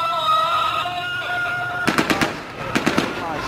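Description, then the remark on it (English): Sustained chanting voices, prayers of Syrian rebels celebrating the capture of an army base in Mayadin in eastern Syria, give way to two quick volleys of celebratory gunfire, each a rapid string of four or five sharp cracks, loud, with the voices continuing underneath. “The rebels celebrated with prayers and gunfire.”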